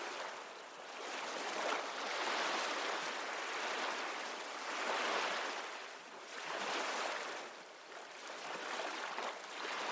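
Ocean waves wash steadily onto a beach, a broad hiss of surf that swells and recedes in slow surges every few seconds. The sound is continuous, with no voices.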